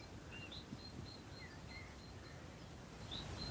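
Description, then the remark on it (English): Faint birdsong of short high whistles and chirps repeating throughout under a completely blue sky, set against a steady low rush of gentle breeze, with no one speaking. “As you can hear a little bit of bird song.”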